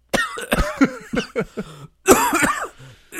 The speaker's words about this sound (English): I couldn't tell if you were actually coughing or... No, that was acting. That's pretty good. Acting.